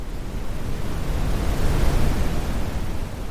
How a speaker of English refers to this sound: Lights are all buzzing. Humming.